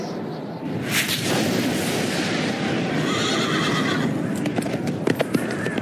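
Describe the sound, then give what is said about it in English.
A horse whinnies loudly, its neigh rising and trembling over a rumbling, dense background, followed by a few sharp hoof-like clatters near the end. “And I looked, and behold, a white horse.”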